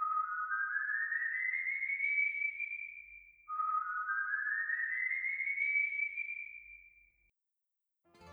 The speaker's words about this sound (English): And if you ever find yourself walking alone on a quiet Venezuelan night, keep your ears open, because you just might hear the haunting whistle of a tormented soul seeking redemption.